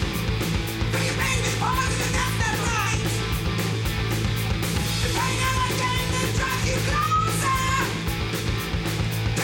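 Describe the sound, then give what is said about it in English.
The opening of a heavy metal song with a wah effect at the beginning, dense, distorted, pounding instrumentation throughout, topped by high wailing vocal screams that swoop and slide in pitch, loud. “But it also had a wah at the beginning.”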